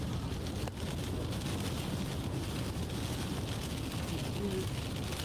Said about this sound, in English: Somebody's riding their lawnmower up and down the street.